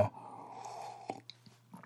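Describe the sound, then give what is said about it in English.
A drawn-out slurp of hot coffee lasting about a second, followed by a few small gulps and wet mouth clicks. No one speaks. “I've got coffee here, that's why it was slurping sounds.”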